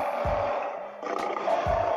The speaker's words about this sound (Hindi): गुफा के अंदर चैन से सोया शेर इस शोर से तंग आ गया। वह दहाड़ते हुए बाहर निकला और श्रृंगेरी श्रीनिवास के सामने अपने भारी भरकम पंजे हिलाने लगे।